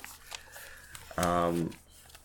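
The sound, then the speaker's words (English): Scattered crinkling and crunching as a dog, Luna, chews a crunchy plastic toy, then a short, loud tonal squeal about half a second long before the chewing noises fade. “Sorry, Luna, I gotta take that from you. No crunchy toys.”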